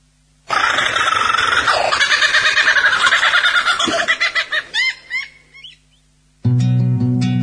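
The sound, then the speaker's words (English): A lyrebird pours out a loud, rapid medley of varied mimicked bird calls, chirps, whistles and rising trills that break into short bursts before stopping, after which a steady harmonic sound begins; the lyrebird is imitating other bird calls and sounds it hears in nature. “We'll leave you now with the sound of the lyrebird, made famous by imitating other bird calls and sounds that it hears in nature.”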